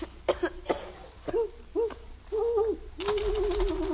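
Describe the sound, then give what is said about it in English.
An owl hoots several times, short low calls at first and then a longer, wavering hoot, with a few sharp knocks early on and no talking. “That's all it is, just an owl.”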